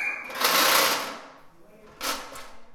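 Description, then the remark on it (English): Mismatched chairs scrape harshly across a floor as they are moved into position for a meeting, in two noisy bursts, a long grinding drag followed after a pause by a shorter one. “An assortment of mismatched chairs make a terrible scraping as they're moved into position for a meeting.”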